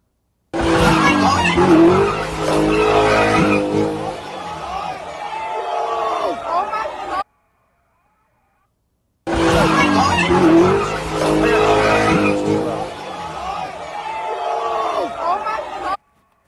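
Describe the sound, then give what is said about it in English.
Loud screeching tires and revving engines at a car meetup with a crowd shouting in the background; the same roughly seven-second burst plays twice, separated by a brief silence. “Can people stop going to these damn car meetups and acting like clowns?”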